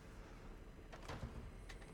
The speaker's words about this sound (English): you broke the door.